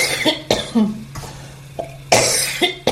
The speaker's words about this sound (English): Deep in, nice and relaxed, and out through your mouth. And sit up to cough it up.